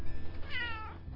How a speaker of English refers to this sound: Cat doesn't sound too happy. He's sitting at the screen door, wants in.